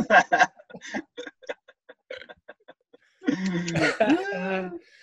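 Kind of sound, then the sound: human body sound, coughing fit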